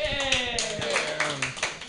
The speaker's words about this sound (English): My dad got married actually like a week ago. We can clap for that.